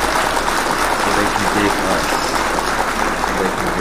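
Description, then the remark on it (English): A studio crowd claps steadily for about four seconds at the opening of the morning show Good Morning Aurora, a loud, dense wash of clapping with voices mixed in underneath. “And when you bring it in, clap for the whole entire world when we come on.”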